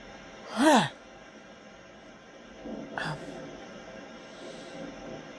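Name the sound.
human yawn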